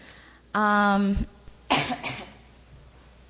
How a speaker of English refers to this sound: So this whole week, I kind of spent it kind of sick, kind of coughing.